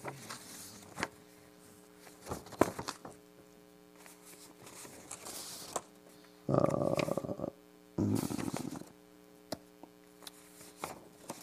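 Pieces of paper are moved about during a recorded talk, shuffling and rustling in two short bursts, with scattered small crackles and taps in between, all over a steady low electrical hum and no talking.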